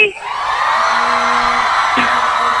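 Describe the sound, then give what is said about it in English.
A big crowd of thousands cheers and whoops in a loud, steady roar, while a single low, droning vuvuzela honk holds for about a second underneath the din. “Thousands of cheers and one honk from the vuvuzela.”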